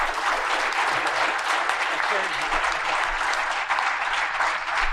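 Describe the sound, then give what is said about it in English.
A steady, dense wash of audience applause for a conference panel, many hands clapping together at an even loudness for the full five seconds, with no single voice standing out. “Let's give a round of applause to our panel, please.”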